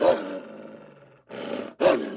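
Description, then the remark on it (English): A decaying wolf missing half its face, emerging from a tree line, lets out a harsh, drawn-out growl, then two shorter snarling roars in quick succession, loud with no voices around it. “We both turn to see a decaying wolf missing half its face emerge from the tree line, followed by a young man with protruding antlers.”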